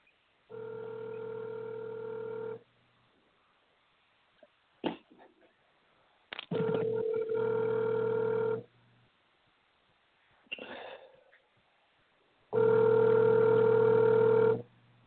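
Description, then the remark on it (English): A telephone rings three times, each long, steady buzzing ring lasting about two seconds with even pauses between, sounding thin as if heard over a phone line, with faint clicks in the gaps. “Wait, my phone is ringing now.”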